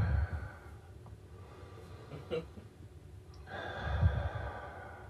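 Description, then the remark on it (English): Soft breathing through the nose, with a short sniff partway through, then a longer, fuller breath that sounds clearer. No one speaks. “Oh shit, it was just a sniffle a second ago.”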